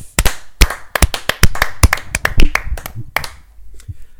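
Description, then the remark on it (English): Several pairs of hands clap together in a loose, uneven burst of applause, loud, with sharp overlapping claps tapering off after a few seconds, clapping out the end of a bracket that crowned the Haunted Mansion the best Disneyland attraction. “We're gonna clap it out.”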